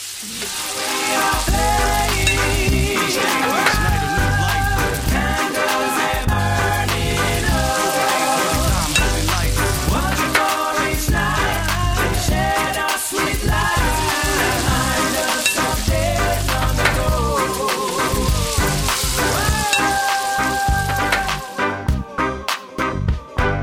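Latkes sizzle steadily and loudly as they fry in hot oil for the whole stretch, with dense crackling and spitting, alongside a melodic, tonal background; no one speaks.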